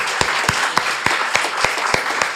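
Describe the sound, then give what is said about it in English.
A crowd applauds steadily, a dense wash of many hands clapping, with one sharper clap punching through in an even rhythm about four times a second. “Can we give them another big round of applause?”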